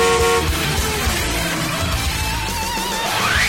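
Several car horns honk over a dense rumble of traffic, with a sustained blare at the start and a wavering, rising siren-like tone near the end. No one speaks.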